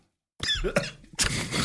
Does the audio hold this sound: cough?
yes